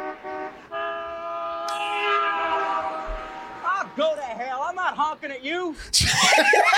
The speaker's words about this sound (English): The only thing that does work is this lousy horn.